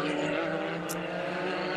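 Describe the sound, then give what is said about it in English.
A loud, steady engine roar of the race leader's car, driven by David Ogborn, going through turn 19, holding a dense harmonic whine throughout, with a faint voice murmuring underneath. “All right, so as let's see, there goes our race leader now, Ogborn, through 19.”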